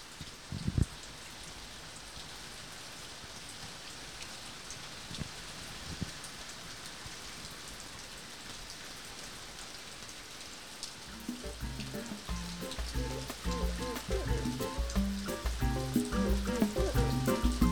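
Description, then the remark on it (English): Steady rain patters down in a dense, even hiss with occasional louder drops, and soft music rises in underneath during the second half. “So I think it's best to close out with like a little rain moment.”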